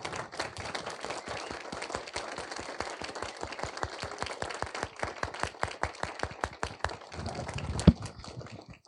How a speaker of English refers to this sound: And I just wanted to applaud you as moms for doing such an amazing job. Let's just applaud all the moms right now. Can we do that?